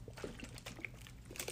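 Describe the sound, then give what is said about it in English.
Quiet sounds of someone drinking water: soft liquid sloshing and small wet gulps over about a second and a half, with no talking. “Sorry, I needed some water.”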